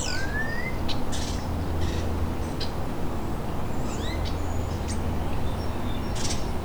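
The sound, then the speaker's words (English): Starlings mimic other birds' calls, including house sparrow, nuthatch, tern and osprey: a varied jumble of whistles, rising sweeps and short scratchy chirp bursts, moderately loud, over a steady low background rumble. No one speaks. “Doing a lot of mimicking.”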